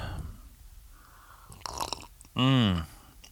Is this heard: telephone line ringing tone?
no